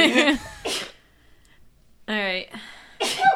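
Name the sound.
sneeze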